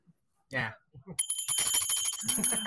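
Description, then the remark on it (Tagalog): After a brief spoken moment, a bicycle bell starts ringing and keeps going, a bright, steady metallic jingle while people keep talking beneath it. “And you're in black, dapat may bell.”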